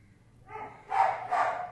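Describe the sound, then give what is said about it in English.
A dog barks twice in quick succession after a softer lead-in yelp, moderately loud, with no voices, interrupting a recording of a Buddhist text recitation. “You might have missed it because of the barking.”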